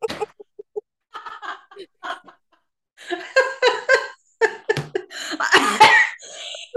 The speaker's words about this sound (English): Let me do a coughing fit.